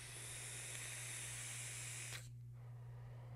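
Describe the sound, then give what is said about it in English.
Steady sizzling crackle of a vape mod's coil firing during a draw, lasting about two seconds before cutting off abruptly, leaving only a low electrical hum. “I love the crackles. Holy crap, I love the crackles.”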